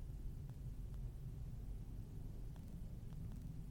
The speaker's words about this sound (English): I apologize. There are airplanes flying overhead.